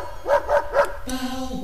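A dog barks three times in quick, evenly spaced succession, fairly loud, followed by a steady, sustained tone with no voices.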